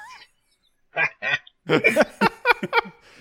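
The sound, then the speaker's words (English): A person imitates crows, making harsh, nasal caws: two separate calls, then a rapid, squawking run of several more, loud with short gaps between. “I say, give me all those crows.”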